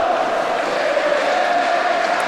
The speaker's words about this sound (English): the Hull fans are the only people you can hear in the stadium. That tells you everything you need to know.